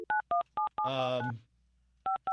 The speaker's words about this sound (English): I don't have to dial 9. Hold on. You dial 9 to get out?